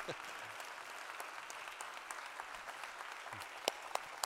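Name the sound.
audience applause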